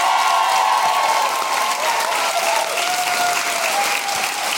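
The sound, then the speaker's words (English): Steady, loud applause from a large audience for Susan Calman, a dense wash of clapping that holds level throughout, with a few faint whoops and cheers mixed in. “Ladies and gentlemen, give it up for the wonderful Susan Calman!”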